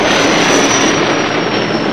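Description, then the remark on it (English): A loud, steady engine roar of the Millennium Falcon coming out of hyperspace near the coordinates where Alderaan once existed, a dense rushing rumble topped by a thin high whine, holding constant for about two seconds with no voices. “Meanwhile, the Millennium Falcon comes out of hyperspace near the coordinates where Alderaan once existed.”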